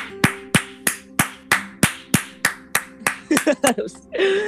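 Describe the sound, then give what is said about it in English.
A quick, steady run of about a dozen sharp hand claps at an even rhythm, ending as a voice cuts in over the last few claps. “Let's get a round of applause, guys.”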